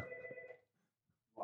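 A telephone rings with a steady electronic tone that cuts off, followed by a short pause and the start of another ring, clear with no talking.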